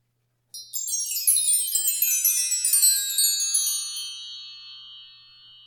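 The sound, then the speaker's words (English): A wind chime, rung to mark the start of a five-minute timed exercise, rings out alone after a moment of silence, a cluster of bright overlapping metallic tones that shimmer for several seconds before slowly fading away. “Yeah, we'll see what comes out of a 5 minute time frame after this wind chime.”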